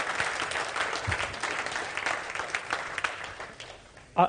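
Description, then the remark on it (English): An audience claps steadily for the preacher, a dense patter of many hands at moderate volume, trailing off near the end as a single louder burst cuts in. “I say this and not to thank you for that applause.”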